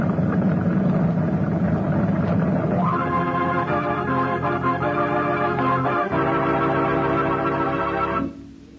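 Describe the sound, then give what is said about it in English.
A motor launch engine drones steadily on the sea as the launch approaches a ship, its hum shifting to a higher, more tonal pitch partway through before it suddenly drops away near the end as the motor is slowed. No one speaks. “Now slow the motor.”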